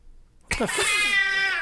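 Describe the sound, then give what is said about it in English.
After a brief silence, a single loud, drawn-out cat meow sound effect, a downloaded Halloween soundbite, bursts in, its pitch wavering high and whiny as it stretches on for over a second. “It's a random cat.”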